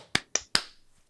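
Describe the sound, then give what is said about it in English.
Three sharp, crisp hand claps made as a clap sync for audio, in quick, even succession, each with a bright snap and brief tail, followed by a faint ringing decay. No voices. “And then a clap sync in 3, 2, 1.”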